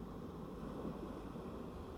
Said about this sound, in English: Listen to those waves. They sound beautiful.